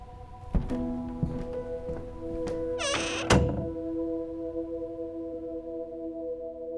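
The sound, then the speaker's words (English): A door thuds shut with a solid knock as someone leaves a room, preceded by a few softer thunks and a brief rising whine, all over a steady low humming drone that lingers afterward. “Close the door on your way out.”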